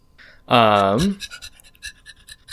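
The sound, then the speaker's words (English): A person imitates a big dog: a loud voiced yelp with a falling pitch, followed by a quick series of breathy, rhythmic panting huffs that fade off. “It's a big old doggy.”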